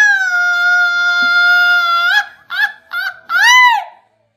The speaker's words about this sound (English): But if you wanna hear a grito, you'll be like...